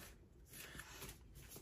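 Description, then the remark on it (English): Oracle cards are shuffled until a card comes out, a soft, continuous papery rustle with quick riffling bursts, fairly quiet and with no one speaking. “So again, just shuffling until the card jumps out for me.”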